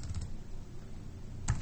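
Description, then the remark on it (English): Quiet computer keyboard typing as someone tries to spell a word: a few soft, faint keystrokes at the start, a stretch of low background hiss, then one sharper key tap near the end. No one speaks. “I was just gonna keep typing until I got it right.”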